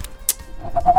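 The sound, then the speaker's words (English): A person imitates an owl's hoot, a low, breathy, wavering note that swells loudly near the end, after a couple of short noisy puffs at the start. “the owl, the pointless owl.”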